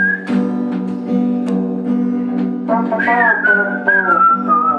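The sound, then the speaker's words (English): A man in a winter cap whistles a bright, wavering melody in a bedroom over steady background music, the tune sliding and sustaining notes, fairly loud, with no talking. “The whistling was good.”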